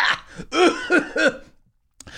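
cough

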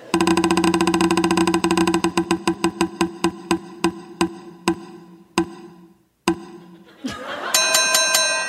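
prize wheel spinning

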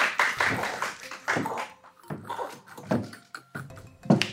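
audience clapping

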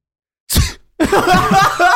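sneeze

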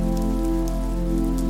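rain falling

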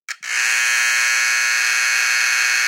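battery-operated doorbell buzzer

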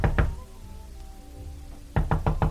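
knocking on a door

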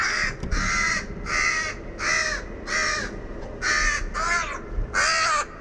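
crow distress call

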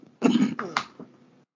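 coughing and throat clearing

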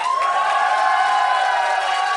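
crowd cheering and applause

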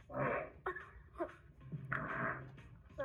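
fart

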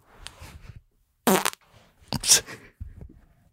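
fart

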